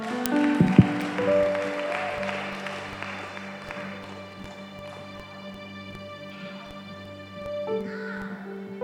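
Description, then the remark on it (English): An audience claps steadily together, a dense patter of hands over a sustained droning musical tone, the applause gradually thinning and fading toward the end. “Your clap is too weak.”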